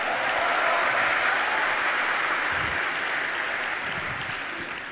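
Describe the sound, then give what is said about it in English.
A crowd applauds steadily for several seconds, a dense wash of clapping hands that stays loud throughout and tapers only slightly near the end, with no voices standing out. “Let's clap it up”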